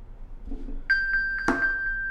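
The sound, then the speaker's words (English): A phone-finder ping triggered from an Apple Watch: a bright, high electronic tone that rings on steadily with a quick pulsing chime pattern, moderately loud, with a brief tap midway and no talking. “That glorious, sometimes embarrassing sound that tells me that my phone is not far away.”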